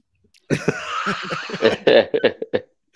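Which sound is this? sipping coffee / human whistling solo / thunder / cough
cough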